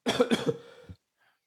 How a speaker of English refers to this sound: Sorry, I had a cough attack there.